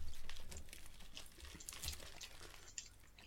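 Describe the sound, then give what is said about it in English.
Continuous crinkling of the plastic packaging of a smoked salami as it is tugged and torn open, a busy crackle of small rustles and snaps, fairly loud, with no one speaking. “Well, this is quite tough to get into. I did take the precaution of bringing scissors, actually.”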